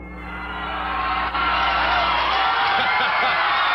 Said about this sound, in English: Who says he didn't like to hear the cheer of the fans? He certainly does.